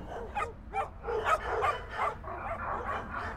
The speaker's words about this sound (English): So many of them started barking. Yeah, these are Earth dogs, I think.